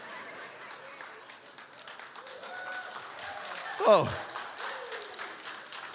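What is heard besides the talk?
audience applause and clapping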